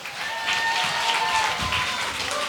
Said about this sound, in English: Let's make a round of applause for Nate Garrett.